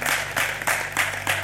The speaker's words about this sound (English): Come on, let's clap our hands and celebrate Jesus. Hallelujah.